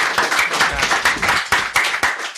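A group of people applauding, with dense overlapping claps in a brisk, steady patter that stays fairly loud throughout, with no voices.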